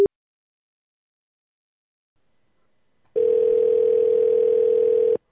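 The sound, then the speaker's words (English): A telephone ringing tone sounds on a call to the King Supers store in Brighton: silence, then one loud, steady, mid-pitched electronic tone lasting about two seconds before cutting off abruptly. No voices. “The phone had rang nearly 20 times.”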